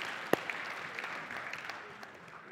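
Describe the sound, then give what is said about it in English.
An audience applauds the people who helped the speaker, with a dense, steady patter of many hands clapping, one sharp loud clap standing out early, the crowd noise slowly thinning toward the end. “Can we give them a round of applause for helping me?”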